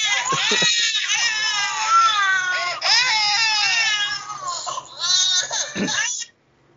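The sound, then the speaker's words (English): A baby cries loudly and almost without pause for several seconds, its high, wavering wails bending into whimpering sobs with brief catches of breath before stopping abruptly. “I will say, despite all the baby noises Nudie is playing, she's a pretty quiet child.”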